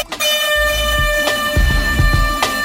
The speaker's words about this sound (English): Let me give y'all the train sound effect. Hold on.